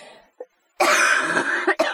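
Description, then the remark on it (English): A loud cough: one long, harsh, raspy burst followed quickly by a shorter second cough, after a brief quiet moment with a faint throat sound. “I'm going to take out a majority of my coughing, but some of it, we're just going to leave it in.”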